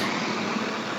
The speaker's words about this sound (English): Away from the bus. Yeah, we'll just wait for that bus to pass.